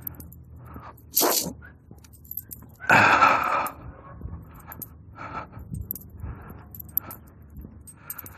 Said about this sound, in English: Big angry, I guess, basset hound. The most active basset hound I've ever seen.